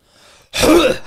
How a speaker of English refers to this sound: Did he just cough? That's all he does. Yeah. Just does that. Throat clear.